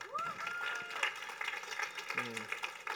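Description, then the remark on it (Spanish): Audience applause: a steady, dense crackle of many hands clapping for about three seconds, with a few voices calling out over it. “un aplauso a mía.”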